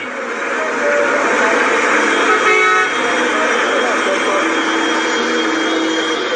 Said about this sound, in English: Surprisingly, I missed the hustle and bustle of Lagos, the commercial nerve center of Nigeria. The traffic was always chaotic, but I loved it. The madness was part of the fabric of the city.